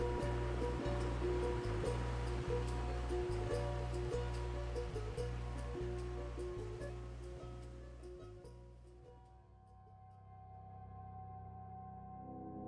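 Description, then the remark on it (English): Gently undulating water washes steadily in a soft, continuous surf beneath a person floating on their back, with a sustained tonal drone and faint rhythmic pulses underneath, before the wash fades gradually toward the end. “I turned upwards onto my back, facing the sky and feeling the water undulate under me.”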